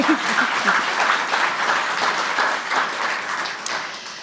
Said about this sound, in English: So that deserves another applause, I think.